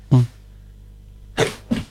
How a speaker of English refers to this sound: There was a sneeze to start off with the book of Genesis. I don't know why.